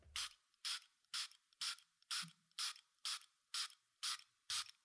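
A small homeopathic spray pump is pressed about ten times in a steady rhythm, spraying under the tongue, each press giving a short, sharp hiss of mist, fairly loud, with no talking.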